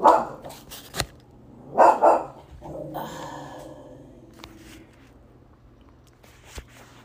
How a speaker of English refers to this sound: Sorry, I was interrupted. Delta's barking. Anyway. He's a good boy. However, I don't like the barking, and I don't know what he's barking at, and I'm just like, ah.